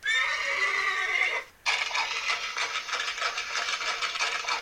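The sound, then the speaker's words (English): A horse pulling a carriage that carries a casket to La Raclette whinnies loudly, a high quavering neigh, then after a short pause breaks into a rougher, fluttering whinny that carries on for several seconds. No one speaks. “Two doctors confirm her death, and her body is placed in a casket and taken via horse-ridden carriage to La Raclette, where the Cambaceres family plot stands.”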